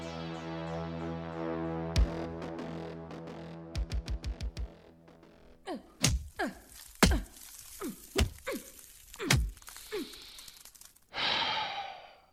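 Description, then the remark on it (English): Dull punches thud against a thick concrete wall in an attempt to punch through it, first a quick burst of about five blows, then slower spaced hits mixed with effortful grunts, ending in a heavy, breathy sigh. “How many punches do you think it'll take to get through a concrete wall this thick?”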